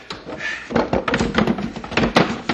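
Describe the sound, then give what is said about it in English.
Wooden creaks and knocking as a box is pried apart by two people working from opposite sides, a rapid series of irregular thunks and splintery cracks over a couple of seconds. “Now, you pry on that side of the box, and I'll pry on this side.”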